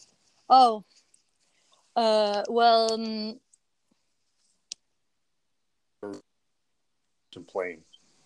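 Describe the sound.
A voice breaks up over a bad connection, chopped into short garbled fragments separated by dead silences, with a sharp digital click in the middle of the dropout.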